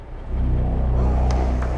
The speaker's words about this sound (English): climbed down into the car, started it up. Have a look.